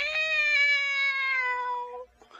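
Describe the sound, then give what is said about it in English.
A voice imitates a cat with one long, drawn-out meow, loud, its pitch sagging slowly before it cuts off abruptly. No one talks. “Mew finds his courage and mews like a cat, sending Dad back to his room.”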